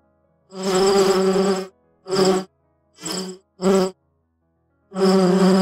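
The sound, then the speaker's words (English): A loud swarm of bees buzzes in five separate bursts: a long drone, three quick shorter buzzes, then another sustained one, with brief silences between them, almost like phrases of speech. “800 bees in a human suit?”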